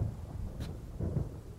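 Deep, rolling thunder rumbles over a steady wash of rain, swelling briefly near the end. The storm sounds continuous, with no voices.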